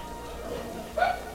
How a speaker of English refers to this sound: Quiet down! Bad dogs.